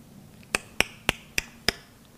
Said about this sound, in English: You see a hand, and you see the hammer, and you see someone working. And you hear the sound.